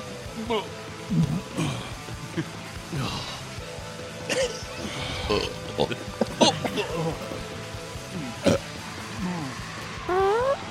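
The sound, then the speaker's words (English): Several loud, throaty burps of Thanksgiving dinner come one after another at uneven intervals, some low and rumbling, others higher and drawn out, with brief vocal noises and laughter-like sounds mixed between them. “verp up Thanksgiving dinner still.”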